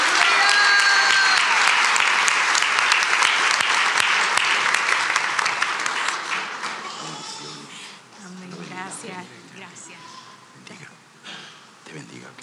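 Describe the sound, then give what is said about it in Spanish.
An audience at a church service breaks into loud, sustained applause after a prayer, a dense wash of clapping that holds strong for several seconds before thinning out as scattered voices begin to talk. “Dar un aplauso fuerte, Señor.”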